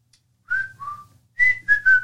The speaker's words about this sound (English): Young baby boomers whistle Fred Flintstone's theme.